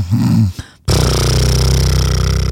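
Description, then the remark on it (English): A voice imitates a man's loud snoring on a flight, mouth wide open with his mask pulled down to his chin: a short throaty grunt, a brief pause, then a long, harsh, rattling snore held at full volume until the end. “And he's snoring with his mouth wide open. The mask is on his chin and he snores like this.”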